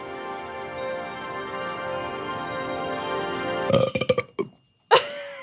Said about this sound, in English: Sorry, I always do a burp at the end of that poem.